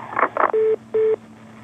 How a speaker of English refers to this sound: Hello? I guess I got put on call waiting or something.